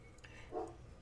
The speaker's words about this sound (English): Dogs.